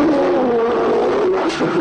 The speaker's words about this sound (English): There's a sneeze, and that's a grizzly bear.